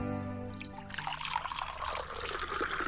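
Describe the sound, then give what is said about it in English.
Water pours steadily into a container, a continuous splashing trickle that starts after a brief hum and keeps running, its pitch rising slightly as the vessel fills. “We are ready to commence the pour.”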